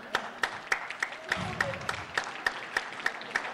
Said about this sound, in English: Nah, you gotta mean it. You gotta mean it. That's a sympathy applause.